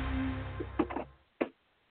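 A car door shuts with a solid, muffled thump, preceded by a low engine-like rumble and a few light clicks and knocks. No one speaks.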